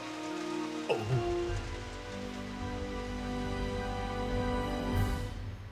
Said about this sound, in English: And in the background, making its way through the silence, a low yet constant noise. Rain.